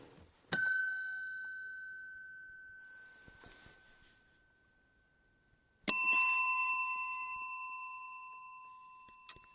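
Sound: big bell ringing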